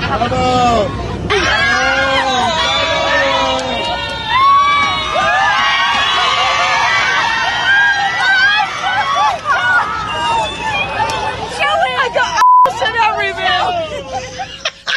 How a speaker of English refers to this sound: Embarrassing if the whole plane cheers for the you. The worst, but also the best story. I'm sure that guy was going, yeah, because that was a big applause.